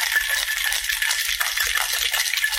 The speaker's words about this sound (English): Just going to add a little bit of ice just to get that so I can froth it up.